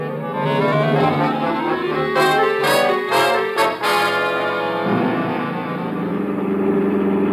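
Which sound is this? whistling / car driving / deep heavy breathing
car driving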